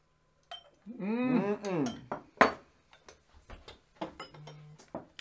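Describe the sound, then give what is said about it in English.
A voice calls out briefly, then glasses clink together in a bright toast, followed by a scatter of small taps and clinks of glassware being handled. “I'm going to say cheers with that 15.”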